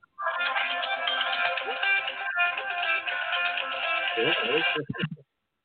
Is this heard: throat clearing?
no